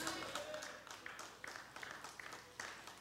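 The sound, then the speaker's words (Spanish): An audience applauds steadily for about three seconds, a dense wash of many hands clapping with a few sharper claps standing out, holding at a fairly even level throughout. “Conforme me aplauden, ya entiendo que los que aplaudieron entendieron.”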